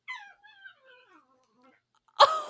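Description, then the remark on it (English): A dog whines in a string of high, wavering whimpers that trail off, then lets out a sudden, louder gruff yap while playfully growling, with no one talking. “We should just make a whole episode of the noises our dogs can make sometimes.”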